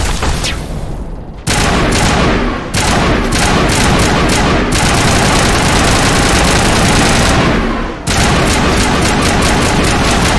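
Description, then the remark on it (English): Loud bursts of rapid rifle fire in a video game, fired by rapidly clicking rather than holding the button while fighting Geth: crackling shots in quick repeated volleys with brief pauses, over a dense, rumbling background of combat noise. “Yeah, this rapidly clicking on the rifle thing sure does seem to be a lot more effective than actually holding the button, unless you're, like, practically on their face.”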